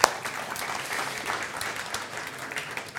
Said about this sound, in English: And why don't you give yourselves a round of applause for that?